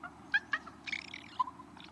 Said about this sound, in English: And during that ritual, they may make these warbling sounds. Raven nestlings sometimes make this same sound after they've been fed. Compared to the usual raucous raven calls, this one is soothing to adults and to their young.